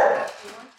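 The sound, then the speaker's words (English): Several dogs bark sharply, a loud yelping cry fading over a brief moment, with faint further barking trailing underneath, as the dogs greet visitors arriving at a woman's home. “She welcomed us into her home, where we were immediately greeted by a choir of dogs.”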